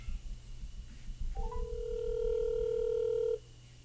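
A couple of quick telephone keypad beeps lead into a steady, fairly loud dial tone that holds for about two seconds, then cuts off over a low background hum.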